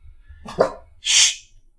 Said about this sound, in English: Guys, we're podcasting. No barking, ever.